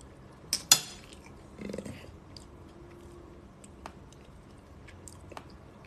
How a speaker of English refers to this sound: What are you eating? I'm eating salad.